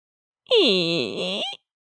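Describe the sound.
A voice imitates a creaking door, the entrance to the Cavern of Lies, with a single drawn-out, strained creak lasting about a second. Its pitch slides downward and then wavers, loud and raspy, with no other sounds around it.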